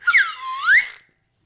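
A cheap slide whistle blown once for about a second: its shrill, slightly breathy tone slides down in pitch, then swoops back up before cutting off. Fairly loud, with no voices.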